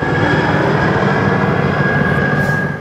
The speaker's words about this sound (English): An air ambulance heads for the scene of a crash that temporarily closed the Coquihalla just south of Merritt.